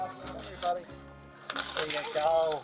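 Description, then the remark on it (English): People break the glass pane of a claw machine: it shatters partway through, a sudden crash followed by bright tinkling and clattering fragments, heard over a background of voices and tonal noise. “They broke the glass. Right. They just shattered it.”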